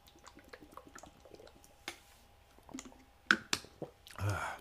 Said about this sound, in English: Gulping down some yummy water today. Trying to stay hydrated.